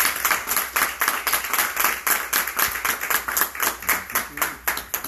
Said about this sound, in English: So come on, let's give Bishop another applause.